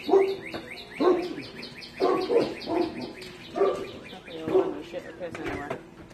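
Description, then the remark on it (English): A female dog barks in short, repeated bursts at irregular intervals while birds chirp steadily in the background. “But if I'm out here with her and him, she sparks him the whole time.”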